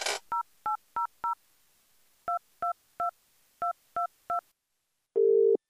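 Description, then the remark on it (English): A phone number for the Santa line is dialed on a keypad to leave a message for Santa: ten crisp touch-tone beeps in quick groups of four, three and three, after a brief click, ending with a short steady tone on the line. “I thought maybe we could ring the Santa line and just leave a message for Santa and tell him what we want for Christmas.”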